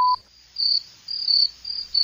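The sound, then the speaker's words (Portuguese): Crickets chirp around a house in the middle of the woods near a lake, in repeated high-pitched trilling bursts, pulsing on and off at a steady rhythm, moderately loud against a quiet night background, with no voices. “Os grilos cantam ao redor da casa das pessoas confinadas.”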